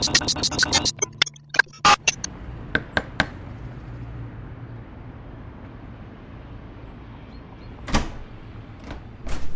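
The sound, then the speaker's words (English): A door is opened: a quick run of sharp latch clicks and rattles, then a few knocks and thumps over a low steady hum, with one more bump near the end. “Sorry, it took a while coming to the door.”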